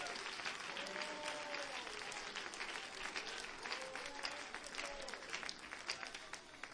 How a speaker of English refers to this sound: Clap your hands and make a joyful noise while you're being seated and give God great praise here this morning.